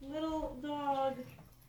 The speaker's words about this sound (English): You might hear, now you will have heard the dog bark for like 10 minutes,